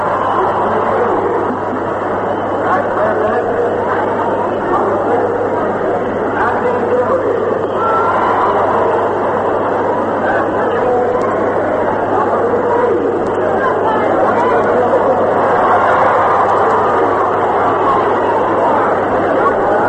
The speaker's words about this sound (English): Hold around, and there's considerable cheering going along with it. Maybe I'll turn this mic and let you try to pick it up.